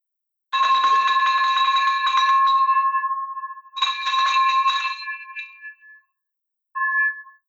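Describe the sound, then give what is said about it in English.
A bright, metallic bell rings long and sustained, struck twice in quick succession with a ringing decay, then a brief softer ding after a pause. No talking over it. “I'm going with the extra long ring on that because holy cow, $175,000”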